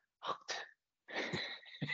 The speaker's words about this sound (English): that was just me coughing, by the way.